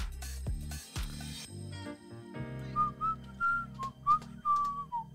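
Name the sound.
person whistling a tune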